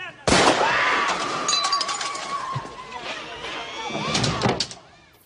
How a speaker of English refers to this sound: And Tom Hanks like locks the door. And the scene I love is that scene where he's just alone in this room and there's gunshots outside.